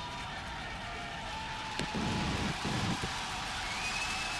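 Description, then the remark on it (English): A broad, steady roar of a crowd cheering a Starship rocket launch as it takes off, like a packed arena, with a few louder low bursts rising briefly around the middle before settling back to a constant wash of noise. “Sounds like they're in Madison Square Garden.”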